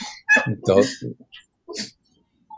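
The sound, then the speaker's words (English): Small dogs yap in a quick burst of several high-pitched barks, fairly loud, then a pause and one more bark before falling quiet. The dogs are playing: a 17-pound black chihuahua-dachshund hybrid and an 80-pound white dog. “Sorry, there's audio entertainment for, I don't know if you can hear the dogs are There's a 17-pound, this is a 17-pound black dog, which is a chihuahua and a weenie dog hybrid, I guess.”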